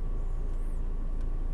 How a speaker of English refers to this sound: Car just pulled in, pulled out.